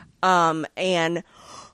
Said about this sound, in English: I'm sorry, I made you yawn.